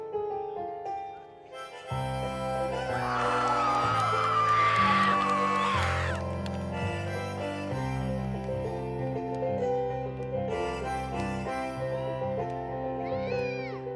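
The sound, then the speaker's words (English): A crowd screams and cheers wildly over loud live music, the shrill cries swelling strongly through the first several seconds before settling into the band's steady playing. “Is that crazy enough? Extra crazy right here.”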